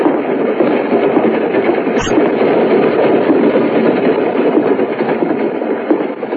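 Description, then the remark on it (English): A train rumbles steadily along its rails with a constant, fairly loud roar, broken by one sharp click about two seconds in. No voices are heard. “It's a shame there's hardly anybody on this train”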